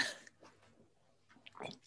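Someone takes a quick sip of butter coffee, with a soft breathy burst, then a slurp and swallow. The sounds are quiet and nobody speaks.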